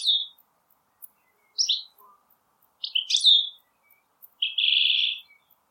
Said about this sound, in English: It's a goldfinch.